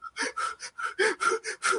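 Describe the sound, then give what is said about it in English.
A person imitates rapid, panicky breathing like a sobbing baby, an adult breathing as if with baby lungs: about eight quick, gasping breath bursts in a steady, hurried rhythm, fairly loud, with no words. “You start breathing like that and you really start crying like a baby.”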